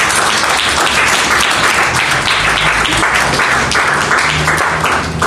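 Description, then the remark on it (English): A crowd claps to Jesus steadily and loudly for about five seconds, a dense wash of many hands clapping at once with no break, while a faint murmur of voices sits underneath. “Clap to Jesus.”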